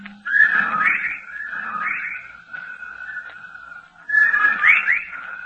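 A legion of whippoorwills outside a window call loudly and endlessly in a steady rhythm, their whistled, swooping phrases overlapping into a dense, echoing chorus with no one speaking.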